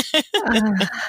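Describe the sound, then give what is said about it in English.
A single voiced sneeze: a short sharp intake, then an abrupt burst that trails into a drawn-out, tonal 'choo' and fades. No other sounds around it. “Bless you.”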